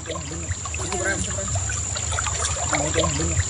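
Shallow water of a river in the west of Cuba, near an old family farm, burbles and trickles steadily in the rainy season, with soft splashy movement as someone wades across it, a continuous watery rush running the whole time.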